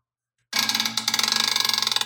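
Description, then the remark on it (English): A loud, drawn-out fart bursts in after a moment of silence, a raspy buzzing flutter of rapid, even pulses that holds steady for under two seconds, with no talking over it. “You've got so much timbre to your arsehole.”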